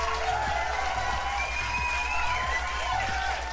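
A crowd cheers and applauds for the film Beautiful Boy in a steady, dense roar, with shrill whistles gliding above the noise and a low rumble underneath for the few seconds it lasts.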